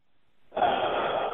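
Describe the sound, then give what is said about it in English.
After a brief silence, a sudden loud, breathy gasp bursts out and carries on as a forceful, sustained exhale from a person who held their breath for a long time, with no talking. “Held it for a long time. That was good.”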